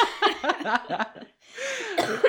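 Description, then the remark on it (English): A few breathy, voiced bursts give way to a brief pause, then a couple of rough, raspy, moderately loud coughs from a person who has been sick. “So your cough, is still lingering.”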